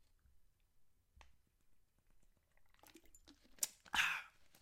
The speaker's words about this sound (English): Let me take a swig of my water really quickly. Hold on.